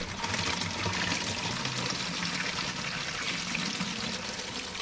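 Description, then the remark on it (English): Water pours steadily into a bottle with a hole covered by a finger, filling it right to the top; a continuous splashing, gurgling rush for several seconds with no talking over it. “if you'd like to fill the bottle up with water”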